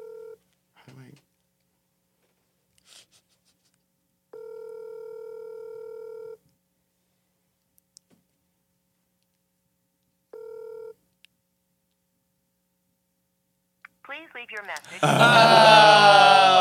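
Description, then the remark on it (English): A short burst of phone dialing tones, then an outgoing ring tone purring twice with long silent gaps between, and no one picking up before a voice starts talking at the end. “They wouldn't answer the phone.”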